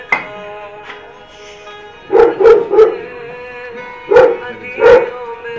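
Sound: dog barking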